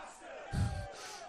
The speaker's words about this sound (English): Oh, they're all taunting the guardian, the goalie.